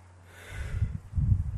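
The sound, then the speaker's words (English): A single drawn-out, breathy yawn, with a low rumbling voice swelling through it over a faint steady hum. “What the you yawning again? Yeah, I've been yawning.”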